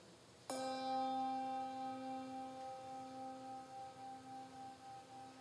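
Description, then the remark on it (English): A single bell struck once in memorial for those who passed in 2023, during an audience's service, its bright clang giving way to a long, resonant ring that slowly fades with a gentle wavering pulse, heard alone with no voices. “We ring a bell for those on your hearts and minds who passed in 2023.”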